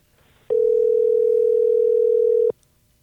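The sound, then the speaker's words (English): A phone call's dialing tone: one steady, loud, mid-pitched hum that starts abruptly, holds unchanged for about two seconds, then cuts off, with quiet background before and after and no talking. “Press the button right that one that says call.”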